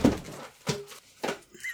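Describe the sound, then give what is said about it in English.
A video chat device gets knocked over: a few muffled thumps and clatters spaced apart, ending in a sudden loud, sharp bang. “just got so mad he knocked down his video chat.”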